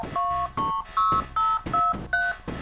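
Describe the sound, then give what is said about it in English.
A run of six short electronic two-tone beeps from a telephone blue box, each pitched differently, evenly spaced in a quick steady rhythm, loud and clear with no voices; the tones signal that the line is hung up, allowing a free phone call. “Blue box works basically just saying one thing: we're hung up. That's it. And you suddenly get a free phone call.”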